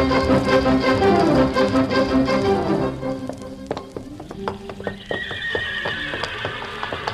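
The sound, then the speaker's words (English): Horses whinny loudly and repeatedly in the paddock at Churchill Downs, 20 minutes before a big race, their neighs fading as scattered hoof clops and shuffling take over, with sharp irregular knocks and a faint hiss underneath. “The opening scene is the paddock at Churchill Downs, 20 minutes before the big race, where we find El Chico, Johnstown, technician, Shaladon, Heather Broom on location, and all the other entries chewing the fat.”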